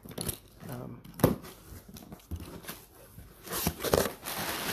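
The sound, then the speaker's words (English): Irregular crinkling and rustling of packing paper being crumpled while unboxing a box about a foot square and six inches deep holding City of Mist books, with sharp crackly bursts that come and go over several seconds and a faint voice underneath. “Again, it's just paper.”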